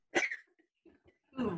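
A sharp cough bursts out, followed by a few faint breathy catches, then another rough, throaty cough at the end, a brief coughing fit from a person whose saliva went down the wrong way.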